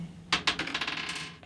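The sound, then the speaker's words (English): Dice rolled in a tabletop game rattle and tumble across a hard surface: two sharp clacks, then a quick run of lighter clicks that gradually slow and settle, with no voices. “So you're wanting to roll a 4, 5, or 6 to see if you roll again.”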